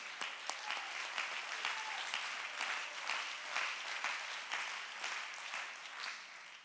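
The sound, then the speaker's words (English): An audience claps hands to give God praise in a dense, continuous burst of applause, steady and fairly loud for several seconds, with no clear voices standing out. “Come on, let's clap our hands and give him praise.”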